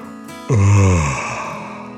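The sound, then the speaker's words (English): A single drawn-out yawn voiced by a storyteller as the character Dragon yawning, opening loudly with a low, moaning tone that slides downward and fades over about a second, with no words spoken. “Dragon yawned.”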